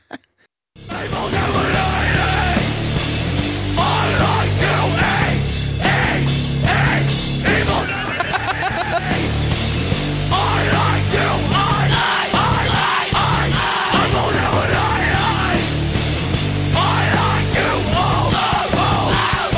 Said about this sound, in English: this is from our track … with … on various types of screaming